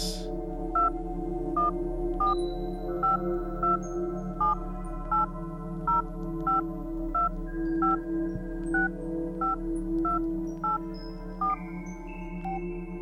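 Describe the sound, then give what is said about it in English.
A long series of short electronic touch-tone beeps, evenly paced about twice a second, as a phone number is keyed in over a steady low hum. No one speaks. “What the fuck is up with this phone number?”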